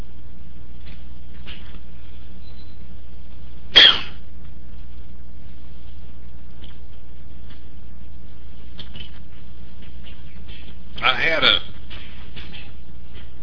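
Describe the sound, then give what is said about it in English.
Two sharp coughs about seven seconds apart, each a brief harsh burst, the second slightly longer and rougher, over a steady low background hum. “I need a cough drop.”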